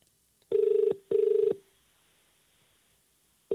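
Ringback tone of an outgoing phone call: a steady electronic double purr, two short bursts close together, a pause, then the next pair starting. Clear, with no talking.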